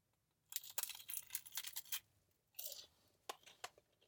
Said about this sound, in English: I don't know if you heard the crunch. I don't like to keep the sounds of me eating, actually, in the podcast, but it has a really good crunch to it.